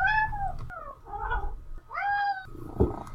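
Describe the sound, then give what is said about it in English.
A cat in a studio makes a series of short, rolling chirping sounds, three or four little trills in a row, with a soft low rumble underneath and a brief thump near the end. “That is just one of the reasons why he is a fucking awesome cat, is that anytime you talk to him or if you sneeze, he makes these awesome little row noises, and they're incredible.”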